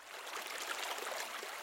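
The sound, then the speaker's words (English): Steady, continuous rush of flowing river water with a soft bubbling texture, fairly quiet and even throughout, with no voices or other sounds. “Take a hairball basket, Brian. Down to the river, then.”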